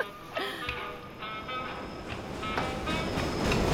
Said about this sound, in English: The train's slowing down, the man starts doing the hat line.